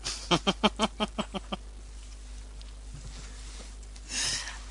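A single goat bleat with a fast, stuttering quaver that fades over about a second, followed by quiet background rustling and a brief soft burst of noise near the end.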